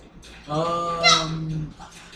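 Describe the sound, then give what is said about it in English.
A single drawn-out wolf whine, about a second long, tonal and nasal, with its pitch jumping up sharply in the middle before settling, over a quiet background. “Nope, those are just wolves.”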